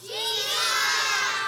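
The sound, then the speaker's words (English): A group of children shout out the answer "Jesus!" together at once in response to a question, a loud, overlapping burst of young voices that swells quickly and holds for about a second and a half. “But yell out loud, and this is going to be the first one we give out candy for.”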